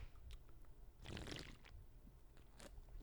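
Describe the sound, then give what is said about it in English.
A short burst of liquid sloshing and gulping as someone takes a quick swig of Bud Light Cherry Limeade beer from a can, then quiet with a few faint slurpy sounds. “A Bud Light Cherry Limeade, and I feel great. Yeah, cheers. Cheers. Nice little chug out of this.”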